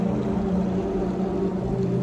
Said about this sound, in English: I don't know how many there were, but it was a pretty nice, mellow drone there, wasn't it? It was nice. I like the sound of those motorcycles. They're all harmonizing. That was cool. Barbershop Motorcycle Quartet.